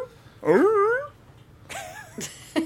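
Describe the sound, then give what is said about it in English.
A deaf dog whimpers in two drawn-out, wavering whines with a pause between, followed by a couple of brief, sharp yelps at the end; no one speaks. “Yes, the dog's I am. Messing me up here. Stop it.”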